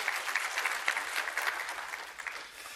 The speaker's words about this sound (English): All right, good morning. We can clap for that. That's good.